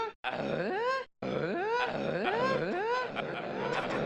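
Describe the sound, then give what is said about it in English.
A person imitates Tim Allen-style grunting noises, a run of repeated rising-and-falling vocal grunts with a brief pause near the start, loud and sustained, with no ordinary speech. “Tim Allen noises intensify.”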